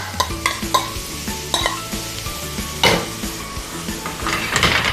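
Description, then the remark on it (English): Rice being stir-fried in a hot pan, a steady sizzle under repeated scraping and clinking as a utensil stirs and tosses it, fairly loud with no talking. “We just stir frying, sauteing. So once we do that, get that going, we're gonna add our rice.”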